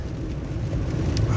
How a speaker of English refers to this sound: Today I am, well, I'm driving home from work, so we're doing this in the car again.